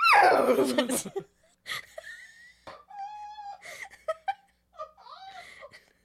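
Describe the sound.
A person's voice imitates a horse's whinny: a loud, shaky cry that drops in pitch over about a second, followed by softer wavering, breathy vocal squeals and giggly sounds.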